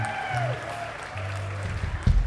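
Audience applause for a live act that joined the evening, a steady wash of clapping at moderate loudness, with a low hum and faint ringing tones beneath it, swelling briefly near the end.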